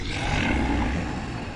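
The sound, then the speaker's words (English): A deep, rumbling dragon roar created with a minor illusion spell, sustained for over a second, loud, with gravelly low-end growl and a breathy hiss on top, with no talking. “And when she says dragons, she also casts minor illusion to create the sound of a dragon roaring.”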